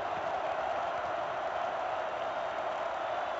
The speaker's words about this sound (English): Spotted at the 13. Four receivers. Crowd in a roar.